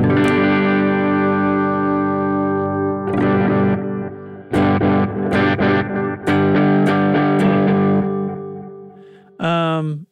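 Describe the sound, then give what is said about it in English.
Overdriven electric guitar through a basic Plexi amp sound with a "drunk delay" setting plays sustained chords and a few choppy strums, with repeating delay echoes trailing each hit, followed by a brief pitch-wobbling, warped phrase at the end. “Okay, so here's my basic Plexi sound. And I'm going to turn on whatever drunk delay is.”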